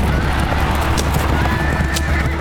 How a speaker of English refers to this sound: The wind whipped at his hair. His hands felt numb from clutching the reins of the chariot. Foam frothed from his horse's mouths, and yet they sped faster and faster.